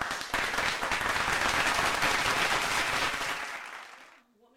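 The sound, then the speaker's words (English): A crowd applauds Top Rank steadily, many hands clapping in a dense, sustained wash for about four seconds before it tapers off and fades out. “Let's give them a little clap, clap, clap, because what they did, they didn't charge us for the unification with Valdez and Shakur.”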